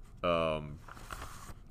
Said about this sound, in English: I had this book on my desk titled Defeating Triple Option Offenses with the Backbone Defense. This thing was written, holy cow. As you can hear, this is actual paper. It's by Phil Jack Dawson.